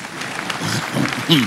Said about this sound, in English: Thank you very much. Clap for her.